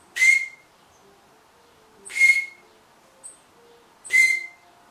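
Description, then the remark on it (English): Birds outside a window give three sharp, high-pitched chirps about two seconds apart, with a quieter short peep in between, over otherwise near-silent background and no talking. “And the more beautiful you are inside, birds will chirp to you from outside your window.”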